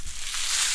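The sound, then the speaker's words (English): Sea salt crunching inside a letter envelope: a brief, dense, gritty crackle with a bright, hissing texture, holding steady and growing slightly fuller toward the end. No voices are heard. “Well, I'll tell you, that sound is the sound of sea salt in a letter envelope.”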